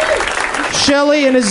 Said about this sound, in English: Yeah, go ahead, applaud for everybody.